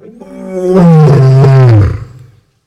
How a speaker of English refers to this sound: when you hear a lion's roar, it makes it a little bit more real